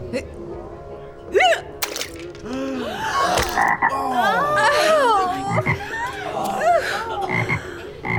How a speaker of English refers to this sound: Is that a frog?